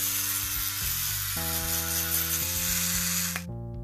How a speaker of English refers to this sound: Electric toothbrush is good because it spins the thing back and forth so you can clean your teeth.